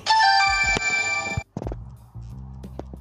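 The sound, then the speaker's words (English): A loud phone ringtone plays a bright, multi-tone melody for about a second and a half, then cuts off abruptly, followed by soft thumps and low handling noise. “So y'all heard that my phone ring.”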